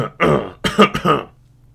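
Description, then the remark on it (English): A man coughs and clears his throat in three quick, rough bursts, fairly loud, after taking a deep gulp of coffee, with no talking, then it falls quiet. “He took a deep gulp of his coffee to have an excuse to cough and clear his throat.”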